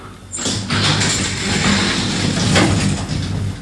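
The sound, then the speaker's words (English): Lift doors slide open with a loud, steady mechanical rumble and whir that starts abruptly and continues for a few seconds, with no one speaking. “The doors have just opened, hang on.”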